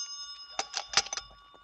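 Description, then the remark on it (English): A telephone rings with a steady, high metallic bell tone, struck in quick rattling bursts that swell and fade over under two seconds, with no voices. “That's your phone.”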